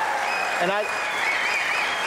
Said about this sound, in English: A well-deserved ovation